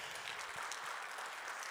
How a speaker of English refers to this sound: Let's give them a round of applause.